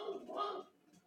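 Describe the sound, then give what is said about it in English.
A dog barks once or twice in a short, harmonic burst that sounds faint, then fades into quiet background noise. “I'm just going to go deal with the barking.”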